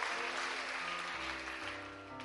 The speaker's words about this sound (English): Clap your hands and rejoice.